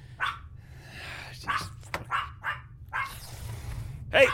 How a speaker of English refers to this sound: Hey! Zip it. I don't want to hear any more barking from you. You understand me? No more!